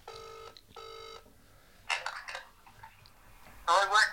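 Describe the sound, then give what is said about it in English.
A telephone ringback tone sounds as one clear double ring, two short buzzy bursts close together, followed by a pause and then brief muffled voices and rustling. “It's ringing.”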